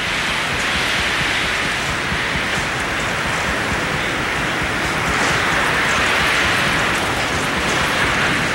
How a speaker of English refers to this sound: To listen and hear this wind. This is about 140 mile an hour winds we're experiencing. This is unbelievable.